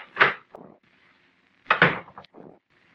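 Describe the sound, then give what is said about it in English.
An office door in a brand new building opens and later shuts with two solid wooden knocks, each followed by a short rattle as it settles, with quiet between them. “I stepped outside the office door and walked over to the brand new stairway of that brand new building.”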